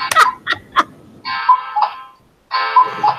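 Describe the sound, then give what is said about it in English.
A clock's added cuckoo feature, alongside its Westminster chimes, goes off at the top of the hour with the time set forward to 8 p.m.: a few quick mechanical clicks, then two loud, buzzy two-note cuckoo calls with a brief pause between them. No one speaks. “Okay, one other feature that I added from the last time I demonstrated it was I added a cuckoo clock feature in addition to the Westminster chimes. And so we're just about to get a cuckoo here.”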